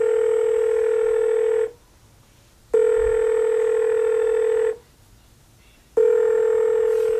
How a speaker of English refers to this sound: So I dial my phone.